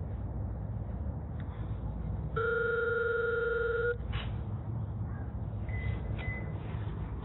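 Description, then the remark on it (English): A single electronic phone ringer tone sounds for about a second and a half as a buzzer button is pressed in a home at 6:55 in the morning: a steady buzzy mid-pitched ring over a constant low background hum, followed by a couple of faint short beeps. “Just gonna go with the ringer up. Let's buzz one more time.”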